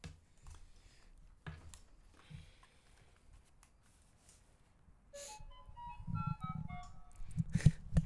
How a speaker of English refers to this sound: So, here we be in Virginia. You can hear cars going by because we are in a shed. Sheds are cool.